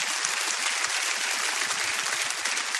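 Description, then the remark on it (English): An audience breaks into sustained applause at an applause line in a preacher's sermon, a dense, steady wash of many hands clapping at an even loudness throughout, with no voices standing out above it. “Yeah, people are clapping at the false doctrine.”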